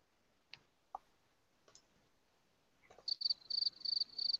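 A few scattered soft clicks, then a crickets chirping sound effect: bright, rapid pulsed trills that start about two-thirds of the way in and continue steadily to the end, clear with no voices.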